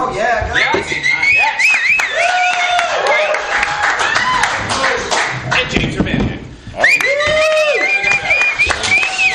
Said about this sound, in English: So exciting to make an entrance with applause on a podcast. You don't know how exciting it is to be here at the actual taping with this live, the energy of the live audience.